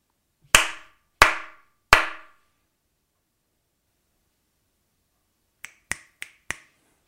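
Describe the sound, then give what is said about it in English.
Three loud, evenly spaced hand slaps ring out with short decaying tails, followed after a pause by four quicker, sharper finger snaps. No voices. “Three slaps and four snaps.”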